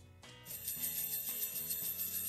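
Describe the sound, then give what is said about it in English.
Sleigh bells jingle in a steady, bright shimmer layered over a musical backing with sustained low notes, continuing throughout at a fairly loud level. “And remember, any music can be Christmas music with the addition of sleigh bells.”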